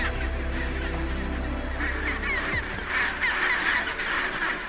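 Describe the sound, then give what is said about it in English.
A dense din of a penguin colony calling, many overlapping honking, braying cries forming a continuous loud chorus with squawks rising above a steady low rumble, no voices. “There's nothing quite like arriving at a penguin colony. It is a complete assault on the senses. It's noisy, it's really smelly, and there's just so much going on.”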